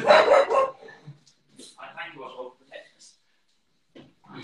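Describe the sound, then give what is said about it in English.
A dog barks loudly, a short burst of barks right at the start, followed by quieter, scattered sounds that may include muffled talking. “Sorry, my inner wolf has come out, Mr.”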